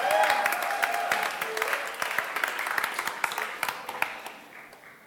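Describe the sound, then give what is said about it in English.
A crowd at a church service applauds the worship band steadily for about five seconds, a dense wash of many hands clapping that gradually thins and fades, with a few murmured voices underneath. “Could we give the worship band a round of applause, please?”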